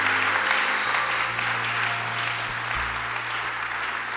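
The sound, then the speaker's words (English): A church audience applauds steadily for the Lord after a prayer for several seconds, a dense wash of many hands clapping at even loudness, with a low sustained hum of organ or keyboard tones underneath. “Come on, church, give the Lord a big round of applause.”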